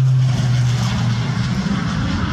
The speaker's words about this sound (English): With planes and helicopters swooping in, the smoke-filled skies above Southern California look like a combat zone. There's the giant Sikorsky with a big water drop right on target there, right on those flames.